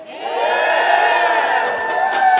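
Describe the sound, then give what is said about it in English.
A crowd of neighbors in nearby condos cheering and whooping in a loud, sustained roar during a performance of O Canada, with faint metallic clanks of banged pots and pans scattered through the din. “He put on a special performance of O Canada as people in neighboring condos cheered and banged their pots and pans.”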